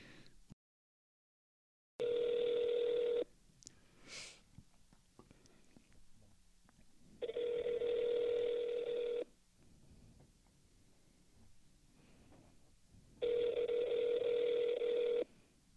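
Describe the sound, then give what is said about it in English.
A phone call is placed and rings out with a steady, buzzing ringback tone, three two-second rings separated by roughly four-second pauses, with faint breathing into microphones and soft rustling in the quiet gaps. “Should we make a phone call?”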